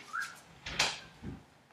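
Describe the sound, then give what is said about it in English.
A pet cat gives a couple of short, quiet meows, with a brief breathy rustle between them and no one talking. “Hush. You have water.”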